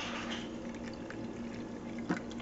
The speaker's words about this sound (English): And so now all we need to do is open up the pitcher here. And we're gonna pour the coffee through this coffee strainer, coffee filter.